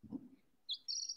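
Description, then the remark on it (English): A small chicken named Sasha gives high, thin chirps, first a short peep and then a longer sustained tweet, faint but clear over a brief low rustle at the start. “Which chicken is this?”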